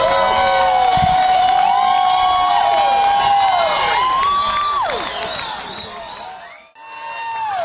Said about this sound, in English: And there goes the band getting together in the middle here to wave goodbye as they slowly walk off the stage. And you know there's going to be more because we got to hear the American band's theme song as everybody will be yelling for more here.